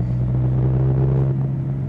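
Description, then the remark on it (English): A steady, low engine rumble from a car at Kuehl Street drones throughout, with a strong deep hum and a faint wash of higher noise above it, holding even in level with no voices. “Just the engine sound in the way.”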